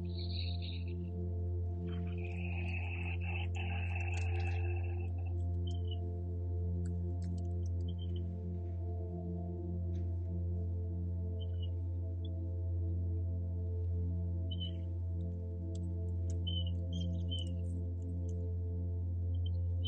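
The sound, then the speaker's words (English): Scattered high chirps and short whistled notes, like birds singing, come and go over a loud, steady low droning hum that runs throughout. There is no talking. “What do the birds have to share with you today?”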